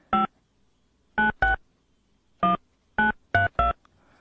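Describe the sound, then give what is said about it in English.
A series of seven short electronic beeps from a phone keypad being dialed to call someone, spaced irregularly with brief pauses between them, clear with no talking. “is not picking up her phone at all.”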